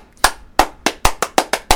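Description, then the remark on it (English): Seven sharp hand claps, fairly loud, in a loose, slightly uneven rhythm that quickens in the middle before a short pause and a final clap. No talking. “No, clap.”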